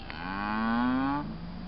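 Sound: cow mooing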